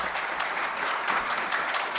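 An audience votes by applause that the landfill story is fiction, in a dense, steady wash of many overlapping hand claps forming a continuous crackling noise at fairly even loudness throughout, with no voices.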